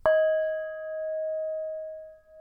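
A single bell is struck once, ringing out with a clear, sustained metallic tone that lingers for a couple of seconds, moderately loud, with no voices.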